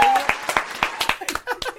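A short round of applause from a small group: sharp, uneven claps landing roughly four times a second, fairly loud, with some vocal sounds mixed faintly underneath.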